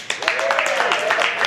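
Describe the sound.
A small crowd in the room gives a shout for people joining across the city, nation and world, cheering and clapping, with a sustained whooping voice rising over scattered, irregular handclaps. The sound stays at a steady, moderate level throughout.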